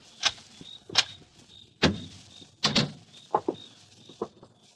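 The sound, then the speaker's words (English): A door being opened: a run of sharp latch clicks and handle rattles, fairly loud, with short pauses between the knocks and scrapes and no voices. “Now open the door, Ruth. Quickly.”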